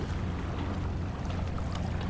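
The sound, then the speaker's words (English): A freighter ship marked Marmaras Navigation on its side slowly passes a park, spewing out a lot of smoke. Its engines give a steady, low droning rumble, almost like an airplane, holding an even loudness throughout with faint hissing wind on top and no voices. “Some freighter that's been slowly going past. I think that's the sound, although it sounds like a plane.”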